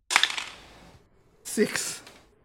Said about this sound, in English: roll me a d20. Yeah, you can see my dice roll, diba?